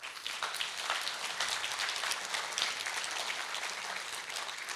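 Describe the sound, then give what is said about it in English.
A church audience claps steadily for about five seconds for the church's volunteers, a dense, even patter of many hands at moderate volume with no voices over it. “Let's give them a clap.”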